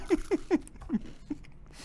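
Crunchy food being chewed right up against the mic: about five crisp, crackly bites in a steady rhythm, with no talking.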